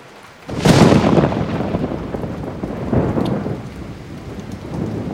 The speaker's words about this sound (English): Whoa, did you see that? Must be really close. I used to stay up with my dad and count between the lightning and the thunder. One, two, three. That's how you tell how far away it is?